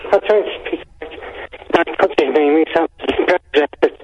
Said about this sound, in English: And also your phone line's crap as well, that's not helping.